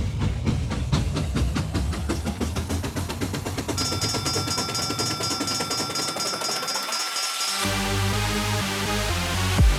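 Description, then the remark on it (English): A train rumbles along the rails with a rhythmic clatter, then a sustained metallic squeal rings out partway through over a steady, fairly loud mechanical drone. No one speaks. “This train's about ready to move.”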